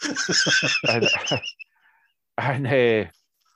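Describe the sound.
A person mimics bird calls with a rapid run of chirpy, warbling voiced notes, a short pause, then another longer trilling whistle-like call, fairly loud with no talking.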